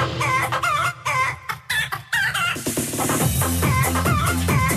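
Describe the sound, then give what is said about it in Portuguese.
A flock of chickens clucks busily, with repeated calls in the first half giving way to a dense, continuous chorus of cackling, and a rooster crowing among them. “A galinha é uma espécie que veio da Ásia.”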